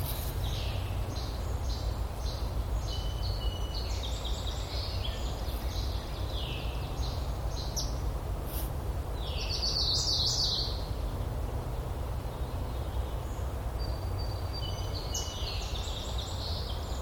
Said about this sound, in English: I'm not ready to record yet, but I wanted to capture some of these birds.